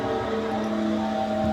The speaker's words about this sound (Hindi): फिर जैसे ही मैंने सामान लिया, मैं छोटे रास्ते पे आगे बढ़ता रहा। अचानक मेरी बाइक बंद हो गई।